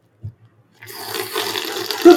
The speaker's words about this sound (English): Give us a little slurp. They were. Give us a slurp. Get close. Give us ASMR. A slurp.